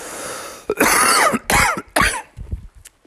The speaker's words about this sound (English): Good night if this cough don't get under control.